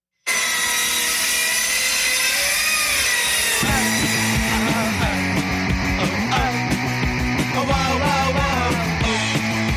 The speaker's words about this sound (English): Now, that was a circular saw in the background. Yes. I know that from Woodshop. Right. I know that sound anywhere.